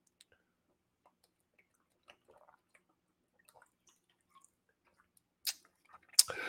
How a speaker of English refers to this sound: I'm going to start off today by drinking some water.